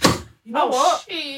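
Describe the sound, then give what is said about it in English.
A single sharp crack, like a wooden chair giving way, sounds loud, then quickly fades before someone starts talking. “Did you break the chair?”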